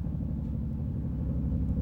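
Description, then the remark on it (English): A helicopter flying outside drones steadily, a deep, continuous low rumble with a throbbing undertone that holds an even level throughout, with no voices. “I'm hearing a real life helicopter right now. Outside.”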